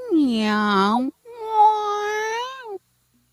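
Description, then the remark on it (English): A human voice mimics a cat, giving two drawn-out, whiny meows one after the other, fairly loud, with a short gap between them. “We're listening for meow.”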